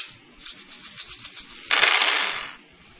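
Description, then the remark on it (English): A rapid rattle of several dice shaken together, then a louder burst of clattering as they tumble across a hard tabletop, fairly loud, settling after a moment. “So roll five, plus four and plus zero?”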